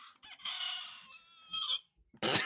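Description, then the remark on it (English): A battery-powered toy rooster crows in a long, warbling electronic cock-a-doodle-doo that sags and stutters as its battery runs out, followed by a short harsh burst of noise. “My rooster is running out of battery. Chicken is dying over there.”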